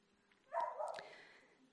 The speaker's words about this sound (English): Got an amen from a dog.